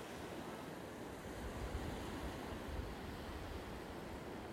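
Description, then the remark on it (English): Steady ocean surf washes continuously against a shore as the sea ebbs away, a broad, even roar of waves with slight swells in intensity and no voices. “You will notice the sea is ebbing away from you.”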